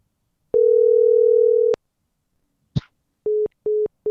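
A steady telephone tone holds for about a second, then a sharp click as the called party picks up and hangs up, followed by short repeating beeps of a busy or disconnect signal, loud with no voices.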